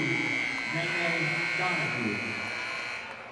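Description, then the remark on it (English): A basketball scoreboard buzzer blares during a malfunction of the scoreboard in the second half of a game, one long, steady, high-pitched tone for over three seconds, loud and unbroken above a murmur of crowd and voices, easing off slightly at the end. “But for a second, the scoreboard was broken as long as the buzzer went”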